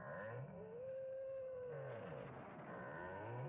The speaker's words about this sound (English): Once again, the bizarre sounds on the soundtrack are deliberately unsettling, but they are also easily explained, in this case as the distressed moans of the cow that the innkeeper's daughter is milking.